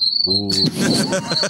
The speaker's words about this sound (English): Crickets. Well, crickets, man. That's up there with farts, dude.